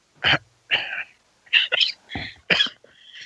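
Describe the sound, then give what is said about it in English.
A man coughs and splutters on a sip of whiskey in a rapid series of about six harsh, breathy bursts, fairly loud, with brief gaps between them and no talking. “coughing his whiskey up now.”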